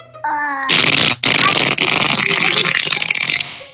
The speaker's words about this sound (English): Sorry, I couldn't hear you because of the disgusting fart noise from the worst students that's ever gone to school.